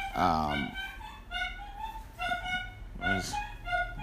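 A dog makes odd, strained vocal noises: a couple of honking, whining yelps with rising and falling pitch, separated by quieter stretches of breathy sound.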